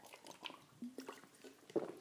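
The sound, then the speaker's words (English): Quiet wet gulping and swallowing sounds of someone drinking water, a few soft squishy sips and throat movements spread over two seconds, with no talking. “Speaking this much without having much water, this is very hard.”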